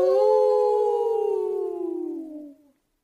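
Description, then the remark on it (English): A single long dog howl, loud, holding a steady wavering tone that slowly slides downward in pitch before fading out after a few seconds. “Woof, woof! Howl!”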